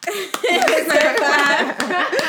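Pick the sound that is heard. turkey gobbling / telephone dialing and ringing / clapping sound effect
clapping sound effect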